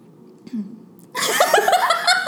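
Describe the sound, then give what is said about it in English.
A brief low grunt, then a loud, rough throat clearing: a run of raspy, voiced rumbling bursts lasting about a second, with no talking alongside. “I had to clear my throat for a second.”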